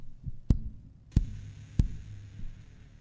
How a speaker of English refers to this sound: You hear a sort of steady knock on your door.